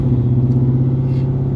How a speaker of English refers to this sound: That's just crazy, man, riding in this truck now, man.